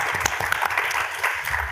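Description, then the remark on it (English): A mid-sized audience at an Arizona State University Difference Engine event in LA claps steadily for the mayor, a dense, even patter of many hands at moderate loudness with no pauses. “And something I am, the fact that he's here today to make time for this, if we could give him a round of applause, that'd be fantastic.”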